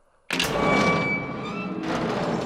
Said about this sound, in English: Okay, I'm opening the door.